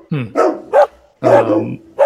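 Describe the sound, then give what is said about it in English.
Dogs bark from various cabins in several sharp bursts, a few yips and woofs spaced unevenly over a couple of seconds, loud and clear with no talking. “You hear the clucking of them as you get near, and as they start clucking more, you do hear barking from various cabins.”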